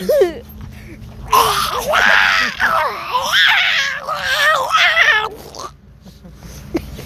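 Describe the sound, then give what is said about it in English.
A voice imitates a sick duck with about four seconds of loud, strained, wavering squawks that rise and fall in pitch in a few rough bursts, then cuts off into quiet. “That also sounded like a sick duck.”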